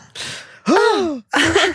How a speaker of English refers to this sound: Gasp! Now I have to download a fucking gasp.